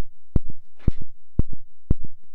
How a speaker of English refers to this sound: Why is there a heartbeat? What the hell is that? I unplugged my phone to plug yours in, and that's just like the electrical signal.